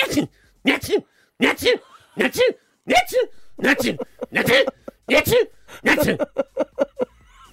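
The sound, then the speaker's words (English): Someone vocally imitates a sneezing fit, about ten loud sneezes fired off in quick succession, each a sharp breathy burst, the last few shorter and faster. “I had one of my sneezing fits.”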